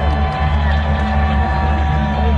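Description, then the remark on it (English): A large crowd cheers and whoops steadily outdoors at a drone show outside Camp Randall, a dense wash of voices with occasional shouts rising above, over a low rumbling hum, loud and continuous throughout. “The sound from the drone show outside Camp Randall.”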